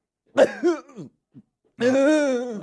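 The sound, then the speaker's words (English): A voice imitates the swallowing grunt of a runner: a couple of short throaty gulps, a brief pause, then a longer strained, droning grunt that holds steady before cutting off. “He's in a swallow, but grunting.”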